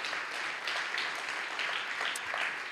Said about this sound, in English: So, these guys work super hard. They are awesome. Definitely worth clapping.